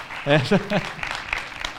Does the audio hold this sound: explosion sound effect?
no